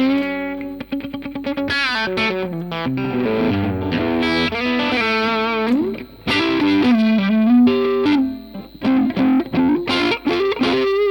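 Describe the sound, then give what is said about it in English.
An electric guitar played through a Vox amplifier, with a bright, honky, barking midrange tone. Strummed chords and quick single-note runs ring out loudly with no talking, pausing briefly twice. “That bark, that honk, yeah. The honkiness of a Vox.”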